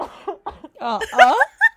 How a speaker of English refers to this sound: And so I need a cough again.